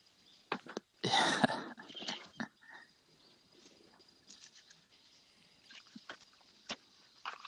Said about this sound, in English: Wow. Can you hear those? Can you hear the birds? I can, yeah. I was kind of wondering what all that commotion was about.